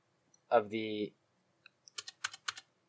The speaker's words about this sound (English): No, I'm clicking through this.